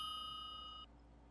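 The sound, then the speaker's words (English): A single bright electronic ring like a house phone, holding a steady tone for under a second before cutting off abruptly, with no voices. “You gonna get that? Was it? What? That wasn't. It's not? I don't have a house phone.”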